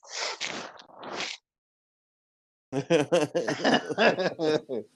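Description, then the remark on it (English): A loud sneeze bursts out in two breathy parts, followed by a short pause, then a person starts talking. “Gesundheit.”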